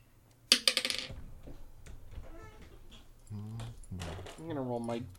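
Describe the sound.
An eight-sided die clatters onto a table, a sharp hit followed by a quick run of fading rattling bounces, and then voices start talking.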